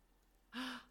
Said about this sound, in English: So feeling that sense of that lift in the back of the throat, breathing in, sighing out. Now, can you keep that lift as if you're going to a gasp?